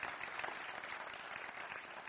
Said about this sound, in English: I'm going to give God a hand clap of praise.